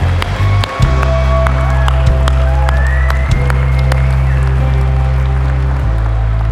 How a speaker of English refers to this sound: Even in the balcony, someone clap, shout. In the back, over there. Come on.